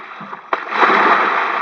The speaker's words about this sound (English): You want to see a big splash? Big step out for me.